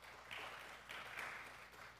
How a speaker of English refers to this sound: I wish my wife was here. She would have appreciated the applause for her.